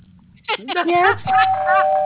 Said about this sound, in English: Activating doorbell.